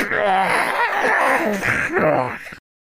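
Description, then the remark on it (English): A voice imitates an inhuman cry, a strained, wavering sound between a scream and a roar. It holds loud and steady for over two seconds, then cuts off abruptly. “You hear something that isn't human. It's not quite a scream, and it's not quite a roar, but it's something like...”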